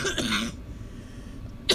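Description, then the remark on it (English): A harsh cough with a rough throat-clearing rasp, followed by a short quiet pause and then a second abrupt cough burst at the end, with no talking. “I think I need a cough drop.”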